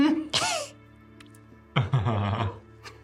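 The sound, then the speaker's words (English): A voice imitates Chunks, a small dragon-like fey creature, coughing out a little flame: a short, breathy rasp, then after a pause a longer, throaty, voiced hack, both fairly loud with quiet between. “Chunks gives you the most innocent look and coughs out a little flame.”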